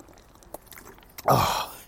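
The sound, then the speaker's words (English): Someone takes a drink of water during a break from walking: a few faint mouth clicks, then one short, louder gulping slurp that fades after about half a second. No one speaks. “Time for a drink break.”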